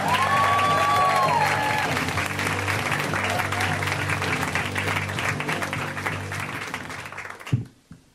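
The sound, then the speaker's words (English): A comedy show crowd bursts into sustained applause for comedian Jay Larson, the final comic, over a steady band music bed, with a brief whistle early on; the clapping stays loud and dense for several seconds, then cuts off abruptly. “Give it up for Jay.”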